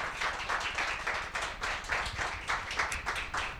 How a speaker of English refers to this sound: Another round of applause for the Erie Philharmonic String Quartet. Brilliantly done.